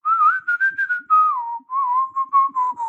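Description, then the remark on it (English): Someone whistles the bouncy theme tune of the TV show Bod, clear, with short detached notes and a few longer held pitches, and no talking. “That's very impressive whistling there.”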